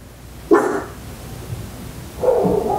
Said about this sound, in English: Whoa. What is that? It was like a crazy dog. Dog attack.